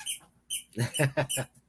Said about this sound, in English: Does someone have a bird? No, that's a doggy treat. Doggy. Oh, a squeaky for the dog.